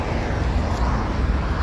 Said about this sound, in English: You see it? See what I'm talking about? So that means a plane must be coming in at every 3 minutes. I'm going to go with that logic. Every 3 minutes, the plane.